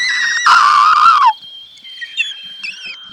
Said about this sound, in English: The mouse throws its head back and lets out a high-pitched cry into the night sky, giving it the nickname of Werewolf Mouse.